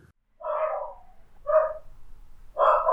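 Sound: dogs barking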